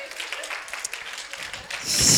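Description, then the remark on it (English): A crowd claps together in a dense, steady patter of many hands, the applause swelling noticeably louder and fuller in the final moments. “Come on, clap your hands.”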